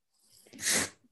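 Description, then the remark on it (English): A single sneeze, fairly loud, opening with a soft intake of breath before a sharp, hissy burst that quickly fades. No one speaks. “Bless you.”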